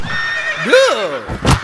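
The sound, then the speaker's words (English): A horse gives a single loud whinny that rises and then falls in pitch, followed by a short, breathy burst of noise. No one speaks. “Get off that horse, sir, or I'll get you off it myself.”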